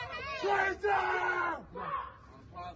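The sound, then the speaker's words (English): A man screams in loud, strained, drawn-out cries during a fight in a video being played, two or three bursts over a few seconds, with a noisy crowd murmuring underneath. “And he's screaming for his mama, I guess.”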